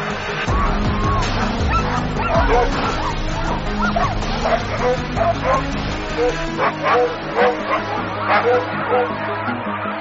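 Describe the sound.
A pack of sled dogs at a dog sled race barks and yips excitedly all at once, a dense, continuous chorus of overlapping voices with a few higher yelps standing out, loud throughout.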